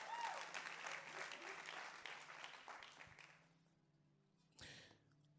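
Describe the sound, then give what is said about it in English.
An audience claps during worship in a dense, steady patter for about three seconds, then the applause thins and fades, leaving a low hum before one last short burst of noise near the end. “Come on, clap your hands, do something.”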